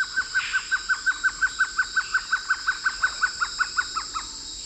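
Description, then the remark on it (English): A trogon calls in a long, steady series of about twenty short, hollow notes, evenly spaced and fairly clear against a soft background hiss, with no talking. “Well, they say home is where the heart is, and to be safe at home, Trogons take that need to an extreme.”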